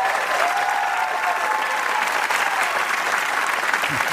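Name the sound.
studio audience applause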